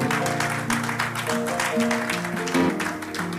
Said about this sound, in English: Amen. Hallelujah. Can you clap those hands for Jesus?